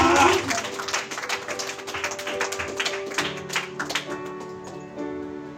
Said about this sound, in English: Oh, are you clapping your hands? Oh, yeah, yeah, yeah.